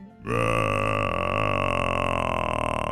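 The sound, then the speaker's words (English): A real hippopotamus in Kenya, heard from a tent right next to a lake, lets out one loud, deep grunt, a raspy, buzzing call that holds steady for nearly three seconds and turns slightly pulsing toward the end. No one speaks. “I didn't know what in the world was going on, but that was actually the sound of a real hippopotamus.”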